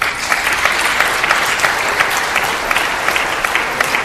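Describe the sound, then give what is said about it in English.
A crowd claps steadily for about four seconds, a dense, bright patter of many hands with no voices standing out and no break in the sound. “Can we have some applause for that?”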